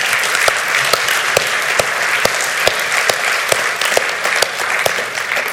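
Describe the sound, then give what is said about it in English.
A crowd applauds steadily for several seconds for people giving at least 10% of their income, a dense wash of many hands clapping with occasional sharper claps standing out, fairly loud, with no voices heard. “But before I say that, let's clap for you.”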